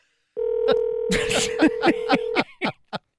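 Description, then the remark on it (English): A telephone keypad being dialed: a steady dial tone hums while a quick, evenly spaced series of short key tones plays over it, with a few more tones after the hum cuts off. “Who's calling? Who are we calling?”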